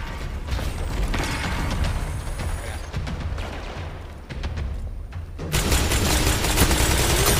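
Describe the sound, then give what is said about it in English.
Repeated sharp video game hand cannon shots crack out in an irregular volley over a dense, noisy game soundscape, ending in a louder sustained rush of noise. “The hand cannon? Nope, that's a hand cannon.”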